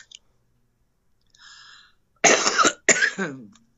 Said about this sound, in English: Little cough.